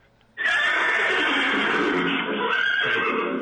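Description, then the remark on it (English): A horse whinny sound effect from a toy laser horse whip bursts in suddenly and plays loudly for about three seconds, a bright, slightly electronic-sounding neigh with no talking over it. “Well, I told you it was a laser horse whip. Uh-huh. It makes a fun horsey sound, too.”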